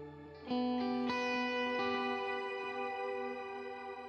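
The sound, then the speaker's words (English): Electric guitar run through an octave pedal into an amp, with delays before and after the amp and reverb, a few notes struck in quick succession and then left to ring out thick and sustained, with a washy, reverberant tail and no talking. “Doing that octave thing.”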